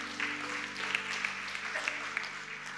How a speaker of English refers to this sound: Come on, could you clap your hands for God's word?